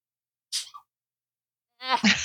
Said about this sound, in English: Hold on. I have to sneeze. Bless you. God bless you.